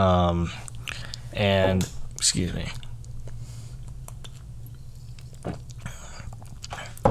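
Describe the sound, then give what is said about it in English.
Someone sips water, with small wet mouth clicks and a swallow after a couple of brief vocal sounds at the start, then quiet with scattered faint clicks. “Had to take a sip of my water.”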